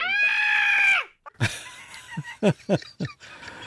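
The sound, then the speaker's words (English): A loud, high-pitched girlish scream sound effect held steadily for about a second, then cut off, followed by a rapid series of short, sharp bursts of noise. “This little girly scream”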